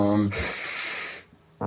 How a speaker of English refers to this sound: I just yawned because I'm tired.